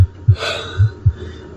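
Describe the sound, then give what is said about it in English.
A deep, muffled heartbeat heard in the ears thumps in a steady lub-dub rhythm, heavy, with a soft breathy rush drifting over the first beats; no voices. “And the first noise that comes back is first your heartbeat in your ears.”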